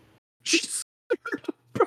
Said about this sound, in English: She sneezed so loud, she scared a bird outside the window. Shut up. Now, this is important. Open or closed window? I am assuming closed. Wow, that is a sneeze.